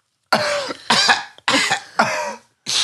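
A series of about five loud, raspy coughing bursts in a steady rhythm, each harsh and breathy with short gaps between them, without any talking.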